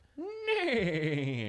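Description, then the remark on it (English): A person imitates a horse whinny: one loud, nasal call rising sharply, then wavering and sliding down in pitch for over a second, with no other talk. “Excellent horse noise.”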